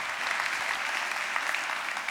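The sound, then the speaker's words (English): A crowd applauds steadily, a dense wash of many hands clapping at even loudness for a couple of seconds with no voices breaking through. “You can give that a great clap.”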